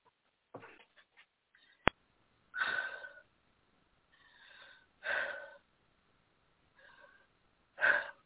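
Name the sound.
breathing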